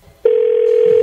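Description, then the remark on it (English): A loud, steady telephone dial tone starts abruptly after a brief quiet moment and holds unbroken at an even pitch, clear, with no voices over it, as a radio station phones Carl Reiner. “Hot Power Radio and your chucker up here in Chuckerland and right now on the phone. Calling.”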